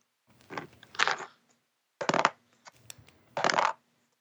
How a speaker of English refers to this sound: He's rolling a lot of dice.